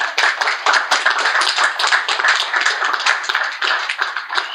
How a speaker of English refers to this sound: And yes, ladies, you got it. He said, only a woman can be all three. Gentlemen, round of applause for the ladies, please.